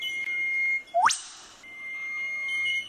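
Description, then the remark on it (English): A whip bird calls once: a sharp, whip-crack note that sweeps rapidly up in pitch and snaps off, set against steady, thin, high-pitched background tones from other birds or insects. “Yeah, I'm going to go whip bird as my favourite animal sound.”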